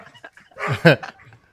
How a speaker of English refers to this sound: Do you ever have any dogs barking in your meetings?